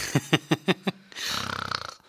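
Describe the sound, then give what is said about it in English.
A voice imitates snoring: five quick, even snorting puffs, then one long rattling, fluttering inhale, with no other talk. “You can do the snore sound effect.”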